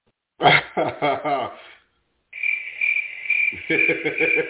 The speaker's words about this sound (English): We give him some honorary crickets.